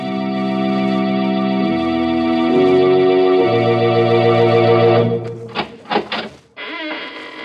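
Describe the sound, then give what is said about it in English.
The squeaking door of the Inner Sanctum Mysteries radio program: a loud, long-drawn creak that shifts in pitch in stepped stages, then a few sharp rattling bursts and a short rising squeal at the end. No one speaks. “When you heard the sound of the squeaking door, it was exactly 30 seconds past the hour for murder.”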